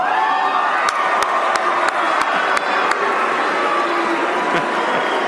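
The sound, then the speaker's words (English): A large crowd cheers and shouts loudly and steadily at a Doug Ford political event on May 14th, with a series of sharp, evenly spaced claps or snaps punctuating the roar in the first few seconds. “Doug Ford goes to work, he says something, everybody around him jumps up and says, hooray, and applauds.”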